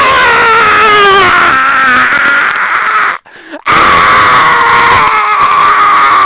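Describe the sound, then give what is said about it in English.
A person imitates a baby's wailing scream with a loud, high, strained cry, held in two long bursts broken by a brief gasp for breath midway. “I don't know how someone falls asleep with someone fucking screaming in your fucking ear.”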